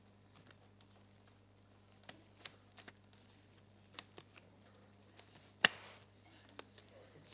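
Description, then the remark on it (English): Quiet, scattered paper-handling noises as pages are turned with gloved hands: soft taps and light clicks at irregular intervals, then one louder, brief rustle near the end, with no one talking. “I even practice turning pages with these gloves.”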